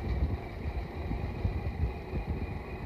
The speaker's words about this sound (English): Now, number 43, you'll hear his chug as we pass him by. He's one of the very oldest of the cars in the run.